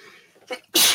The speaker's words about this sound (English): Excuse me, I'm about to sneeze.